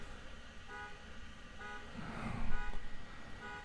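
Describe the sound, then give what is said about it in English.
A car alarm honks outside in short, evenly spaced blasts, about three toots repeating at a steady rhythm, muffled against low street rumble. “You ever notice like nobody comes to like racing out to their car when they hear their car alarm?”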